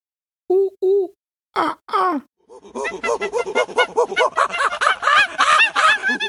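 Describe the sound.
A voice imitates a little monkey: a couple of short hoots, two rising whooping calls, then a long, loud run of quick, chattering monkey-like cries.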